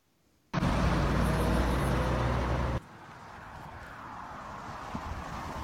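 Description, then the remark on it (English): A loud rush of road noise from a car passing on a street in a school zone starts suddenly, holds for about two seconds, then drops to a softer, steady traffic hum. No one speaks. “He was standing on a sidewalk in a school zone, radar and traffic himself.”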